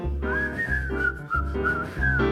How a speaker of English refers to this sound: Forget your troubles, try to be just like a cheerful chickadee and whistle while you work.